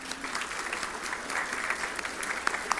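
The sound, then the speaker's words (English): An audience applauds steadily, a dense wash of many hands clapping at a moderate, even level throughout, with a few sharper individual claps standing out near the end. “But right now, let's just give them some applause.”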